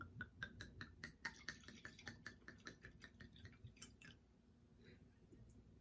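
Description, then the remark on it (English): Blackberry Merlot wine from Tui Wines glugs out of a bottle in a quick, rhythmic stream of gurgles for about four seconds, fairly quiet, then trails off into faint drips. “I'm just saying you pour that a little bit.”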